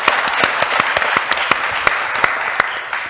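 Audience applause: a steady wash of many hands clapping, with sharper individual claps popping out irregularly over a dense, even crackle that holds at a moderate level throughout.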